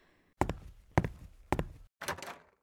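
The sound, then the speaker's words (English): Four firm, evenly spaced knocks on a door, each a heavy thud with a short ringing decay, fairly loud, with no voices. “Someone just knocked on the door”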